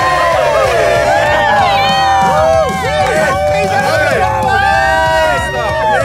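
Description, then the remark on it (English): A loud burst of canned applause and crowd cheering, with rising whoops and shouts layered over a dense, steady roar of voices that carries on for about six seconds. “I knew the fake applause would be too much.”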